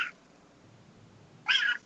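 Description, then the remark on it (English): A pet cat named Booger, in the room with its owner, lets out a loud, strained meow, after the tail end of an earlier cry at the start and a short stretch of quiet room noise. “My cat's in the room with me.”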